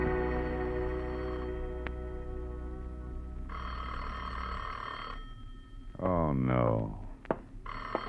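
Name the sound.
telephone ringing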